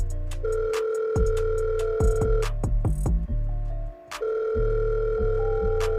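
An outgoing phone call's ringing tone while calling back a missed call: two long, steady electronic tone bursts separated by a short gap with some clicks and thumps, fairly loud, with no one talking.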